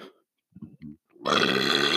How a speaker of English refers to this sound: Oh boy, that was a big burp.